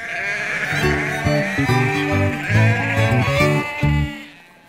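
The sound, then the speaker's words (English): Many sheep, over a thousand, bleat at once in a loud, overlapping chorus of wavering, nasal calls as they are moved off a pier up a gangway onto a boat, continuous for several seconds before fading slightly at the end. “Soon the sheep were being moved off the pier.”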